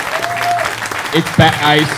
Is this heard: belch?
no